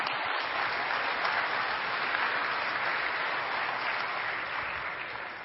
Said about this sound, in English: Seated, please. Yeah, that's all right. You can clap for our country. That's okay.